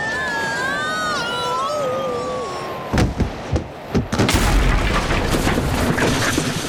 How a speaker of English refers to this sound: Oh, he's crashed right through the wall of the roller rink.